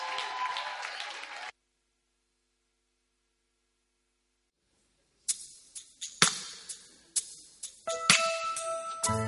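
A church audience claps in a dense burst of applause to welcome a singer for a song ministration; it cuts off into silence, then scattered sharp hand claps return with bright ringing tones starting up underneath.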